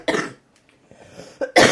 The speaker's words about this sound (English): You're supposed to talk when I cough. I didn't realize you were gonna cough right as I went to take a swig of my beer, so.